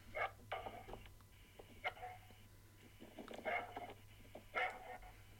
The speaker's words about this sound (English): Well, obviously the dog's barking.